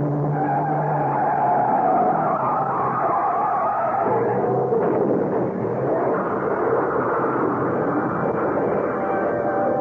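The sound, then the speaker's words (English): A trailer truck that was cut off zooms up on the right side of a car in fairly heavy traffic, its engine and tires forming a loud, continuous rush that swells and shifts with a skidding, screeching edge for the full length, with no voices. “I saw the look on the face of the driver of a trailer truck he cut off and opened my mouth to warn him, but I was just a second too late as the truck came zooming up on our right.”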